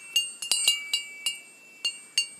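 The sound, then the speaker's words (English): A small mindfulness bell rings repeatedly, about nine bright, high-pitched strikes at uneven intervals, each with a short shimmering ring and a faint tone lingering between hits. No one speaks. “Now, you hear a bell.”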